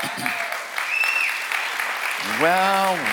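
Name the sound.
light golf clap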